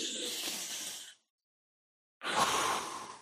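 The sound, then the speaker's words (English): Two long, deep breaths with a pause of silence between them: a breathy inhale of roughly a second, then a fuller, airy exhale, steady and moderately loud with no talking. “Breathing is, and let's all breathe.”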